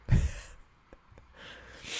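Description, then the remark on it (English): A single abrupt sneeze bursts out at the start, loud and breathy, then fades into quiet before a soft, hissing breath-like noise swells toward the end. No one speaks. “Wow. Bless you.”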